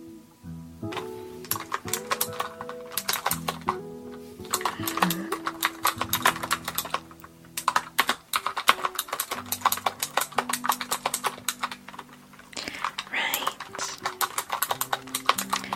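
Rapid, uneven clicking of keys on a clicky computer keyboard, sharp clacks in quick bursts with brief pauses, over a soft sustained musical backdrop; no one speaks.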